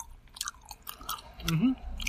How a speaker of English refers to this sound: This one, these are pretty firm. The Happy Colas are a stiff chew. It's the stiffest of the chews.